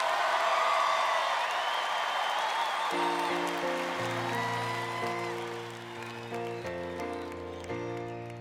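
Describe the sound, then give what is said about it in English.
A large crowd cheers and applauds in a loud, steady roar; about three seconds in, sustained chords of music begin and play beneath the fading cheers. “What if they just kept cheering that way the whole time?”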